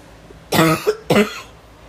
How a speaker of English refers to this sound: So, sorry, I took a break to cough.